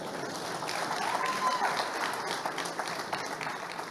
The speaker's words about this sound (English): Please clap for him.